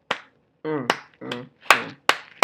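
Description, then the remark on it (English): A slow clap: about five sharp, loud claps spaced unevenly apart, with short wordless vocal sounds from a person filling some of the gaps between them. “Come on with the slow clap.”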